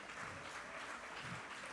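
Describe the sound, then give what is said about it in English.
An audience claps their hands unto the Lord in a dense, steady wash of applause, many hands overlapping into a continuous crackling roar with no single claps standing out. “Come on, if you believe that here today, won't you clap your hands unto the Lord?”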